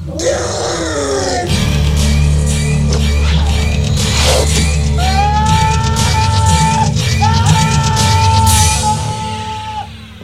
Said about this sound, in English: Hey, did you guys hear that yell? It was probably just … deflowering a millbug virgin. No, that wasn't the scream of a woman. That was ….